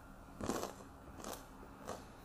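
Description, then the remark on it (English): Three crisp crunches of someone biting into a cracker topped with homemade blackberry jam, each a short crackly burst spaced unevenly apart, fairly soft, with no talking. “Homemade blackberry jam and a little cracker.”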